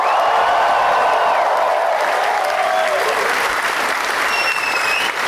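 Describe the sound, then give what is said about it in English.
A large audience at the Batman 75 panel at San Diego Comic-Con applauds and cheers loudly and continuously, with dense clapping filling the space and scattered whoops and high shouts rising over the roar. “Yourselves out as you were cheering as people walked up, so you're gonna have to really set a new benchmark.”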